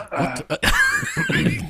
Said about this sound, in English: Everyone cough really loudly. Yeah, that's fine. Yeah, you're good.